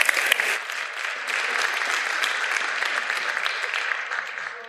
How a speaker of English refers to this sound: Excellent. All right. Give all the kids a round of applause, folks.